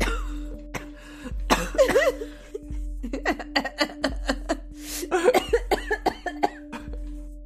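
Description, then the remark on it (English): A rapid string of loud coughs, with rough bursts and short gasping breaths between them, plus some laugh-like vocal sounds; a low steady hum runs underneath. “The after credits could just be coughing.”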